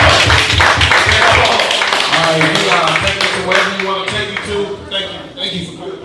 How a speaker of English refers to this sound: Alright, one more round of applause.